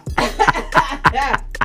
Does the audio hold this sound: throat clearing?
yes